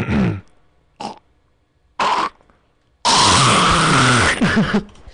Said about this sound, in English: I have been coughing up phlegm all week. Really? Achy and feverish Monday through Wednesday, Tuesday. You think you could cough up some phlegm for us right now as some nice ASMR? I wouldn't have anywhere to spit it, but yeah, I'll try.